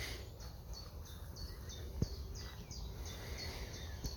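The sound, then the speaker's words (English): Birdsong outdoors: a steady series of quick, high chirps repeating about every quarter second, fairly faint over a low rumble of background noise, with one sharp click midway. “So that might be bird song, the wind through the trees, buzz of the bees.”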